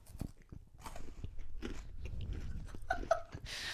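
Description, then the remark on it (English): A crunchy bite into a Kit Kat Chunky chocolate wafer bar followed by steady, wet chewing, with sharp crackly snaps of the wafer breaking apart, no talking. “Well, while he's chewing away there, he is ridiculous.”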